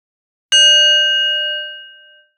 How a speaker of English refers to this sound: We'll begin with a bell.